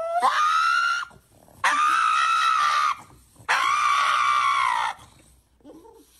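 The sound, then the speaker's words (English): A dog lets out three long, loud, piercing screams in quick succession while having its nails clipped, each over a second and eerily human-sounding, with brief gasping pauses between them and no talking. “Now, it is sort of funny because this dog screams exactly like a human being.”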